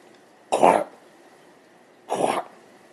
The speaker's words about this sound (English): lurched forward and started hacking deeply, bracing her legs out to support her weight as she struggled to find air between the thick, wet coughs.